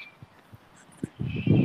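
Faint bird song of thin high chirps and whistles, alongside soft low thumps and a swelling rumble. No one speaks.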